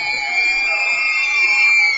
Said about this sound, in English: Despite the best efforts from the crowd behind us, trying to distract him from that free throw. You could break some glasses with that.